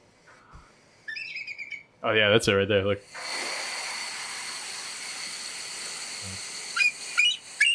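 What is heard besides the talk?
bald eagle call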